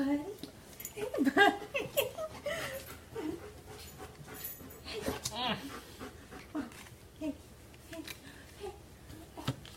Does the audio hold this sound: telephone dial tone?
no